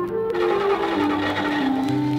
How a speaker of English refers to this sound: They left, and soon they were in the middle of the countryside. All of a sudden, the car broke down.